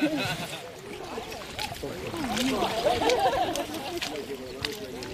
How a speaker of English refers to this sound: About half a dozen brave people are wading out into the water. They're wearing wetsuits or waders. And judging by their reaction, I think the water's quite cold. And they've each got a kite into which they'll put the mussels that they find.